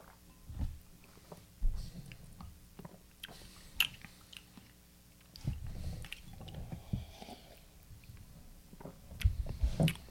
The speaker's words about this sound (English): We should probably take a sip, huh? Yeah, sure. Cheers.